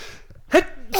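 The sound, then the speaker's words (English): A single sharp sneeze bursts out, a quick breathy explosion that trails off, followed by the start of another breathy noise at the very end. “Bless you.”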